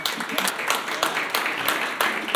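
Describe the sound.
An audience claps steadily, a dense wash of many overlapping hand claps with sharp bright bursts, fairly loud and sustained for the full couple of seconds, with a faint murmur of voices underneath.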